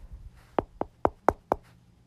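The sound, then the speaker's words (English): Five firm knocks on a door in a quick, even rhythm, sharp, with only faint low background rumble and no voices. “Knock, knock, knock.”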